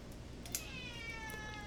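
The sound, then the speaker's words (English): A cat named Raymond lets out a single drawn-out meow, its harmonic whine sliding gradually over about a second, fairly quiet above a steady background hiss with no talking. “My boy Raymond wants to chime in.”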